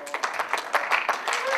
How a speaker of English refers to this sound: Ladies and gentlemen, give me a round of applause.